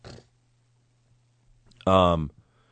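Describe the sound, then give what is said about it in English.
A single short, loud honking nose blow, preceded by a brief snuffly breath and then near silence. “It's amazing how much I have to blow my nose.”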